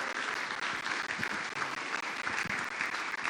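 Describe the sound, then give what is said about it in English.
A church audience applauds steadily, a dense wash of many hands clapping at an even loudness throughout, with no pauses and no voices rising above it. “So give one more round of applause for that, because that's awesome.”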